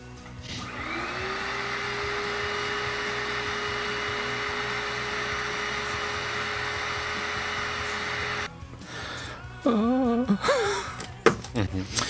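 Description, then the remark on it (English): A vacuum cleaner, used to clean up Kleenex tissues scattered everywhere by a dog, whirs up to a steady, loud drone for about eight seconds, then shuts off, followed by brief wavering vocal sounds. “That's why you get a vacuum.”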